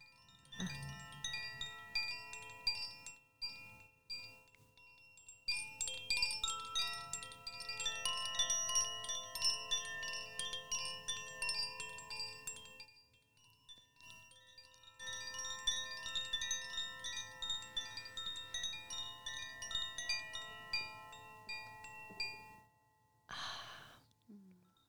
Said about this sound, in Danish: Altså, det hedder en vindklokke, og den, altså for mig, og det er også det, jeg hører fra folk, så går den meget i hjertet.